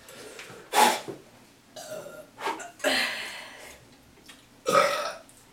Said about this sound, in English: LaCroix burp.